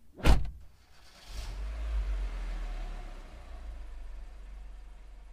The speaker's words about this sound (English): see you at the playground, shouted … as he got into his parents' car